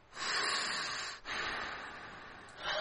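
Breathy sniffles drawn through the nose: two long, airy inhales back to back, with another starting at the very end. No talking, just the hissing rush of air.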